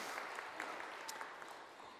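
A crowd applauds steadily, a dense, even wash of many hands clapping with a few sharper claps poking through, sustained at a moderate level for about two seconds with no voices.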